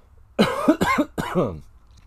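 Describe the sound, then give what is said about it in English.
Three quick coughs in a row, the last one a bit drawn out and throaty, with no talking around them. “I'll edit out that cough.”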